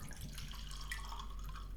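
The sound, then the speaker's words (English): Wine pours steadily from a freshly uncorked bottle into a glass, finished with a wrist twist, a continuous trickling gurgle with faint splashing that holds for nearly two seconds, with no voices. “I had to go around at weddings and pour wine at a little twist at the end so you don't spill it on people”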